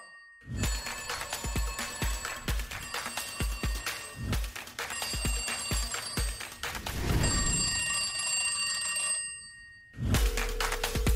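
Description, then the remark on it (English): A telephone rings steadily and insistently, its bright electronic trill repeating for several seconds, stopping briefly, then starting up again. No one speaks. “He's trying to get somebody to answer the phone.”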